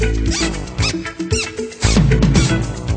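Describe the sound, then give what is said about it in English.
Shoes squeak in short, high chirps again and again, loud, as someone walks near a lake, over dense brassy music with horns playing throughout. “My shoes started to squeak.”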